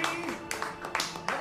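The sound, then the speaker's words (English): A few sharp, irregular hand claps from a man in a film scene ring out over a steady bed of voices and tonal background sound from the film, each clap brief and bright. “Yeah, the focusing on him clapping.”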